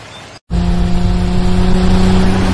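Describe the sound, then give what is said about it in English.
In a television commercial, after a brief moment of silence, a car engine roars to life and revs steadily, loud, with a strong low rumble and sustained harmonic drone. “Yeah, just a typical Super Bowl car ad.”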